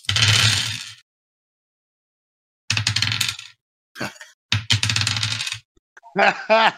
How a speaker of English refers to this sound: So it's I would say roll your dice and then we can choose from there. Okay. Here we go.